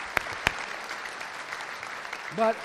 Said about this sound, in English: How many of you know that deserves a round of applause right there? Amen. We appreciate you.